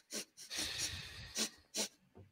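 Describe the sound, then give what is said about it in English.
Loud nasal sniffing, as someone sniffs their fingers: a few sharp, breathy sniffs with a longer drawn-in inhale between them, sounding wheezy and snorty, with no talking. “You're just sniffing your fingers.”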